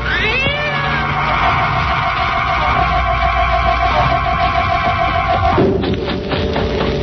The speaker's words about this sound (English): Look behind us. Yes, I can see it now. It's a cat.